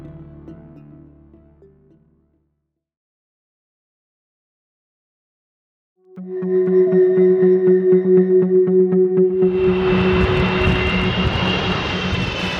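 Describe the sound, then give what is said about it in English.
After a short tonal hum and a pause, a loud droning airplane engine whine rises steadily, then swells into a broad roaring rush as the jet powers up. “Today, if airlines are taking the climate crisis so seriously, then why are so many of the planes they're flying empty?”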